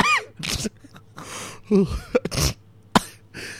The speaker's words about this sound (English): Oh, you're sneezing now